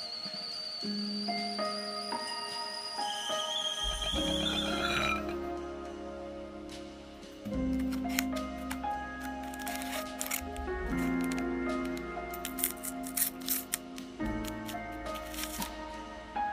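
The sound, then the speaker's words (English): Sounds of making tea: water being poured into a cup, then soft rustling, clinks and small handling clicks as a tea bag with a little tag on top is placed and moved, with no talking. “I'm about to make some tea myself.”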